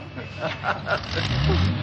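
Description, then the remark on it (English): A car engine rumbles low and builds as the vehicle pulls away, taking a man to headquarters, with indistinct voices murmuring underneath. “Sure, we take him to headquarters in car.”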